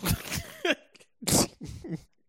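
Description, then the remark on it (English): A person mimics a sneeze into both hands with their voice, a few breathy, forceful bursts, the loudest a sharp burst of air near the middle, separated by short pauses. “She sneezed in both of her hands.”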